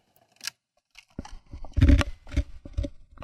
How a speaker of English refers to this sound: Yeah, I'm crunching ice in your ear. You'll be alright.